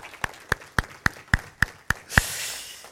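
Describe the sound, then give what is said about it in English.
An audience breaks into a round of applause in the morning: about eight sharp, evenly spaced claps in a steady rhythm, then a dense, sustained wash of many hands clapping together. No one speaks. “Everybody, round of applause this morning.”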